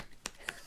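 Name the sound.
clapping with one hand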